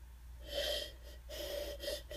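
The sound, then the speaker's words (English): A dog sniffs in short, breathy bursts, three or so snuffling pulls, with a faint nasal whistle and no talking. “I think it's time for you to start sniffing, and not for hot dogs.”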